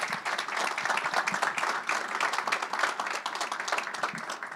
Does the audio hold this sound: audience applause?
yes